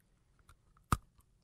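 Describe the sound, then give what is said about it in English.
Someone bites into a hard Milk-Bone dog biscuit with one loud, sharp crunch, surrounded by a few faint crackly clicks of chewing. No one speaks. “That's a milk bone.”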